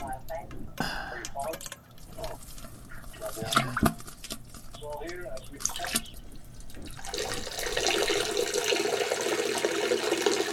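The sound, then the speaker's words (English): A steady stream of urine pours into toilet water as a person urinates, with scattered drips and splashes at first, then a fuller continuous splashing; a voice talks intermittently over it. “I'm not even gonna flush or wash my hands. I didn't even wipe”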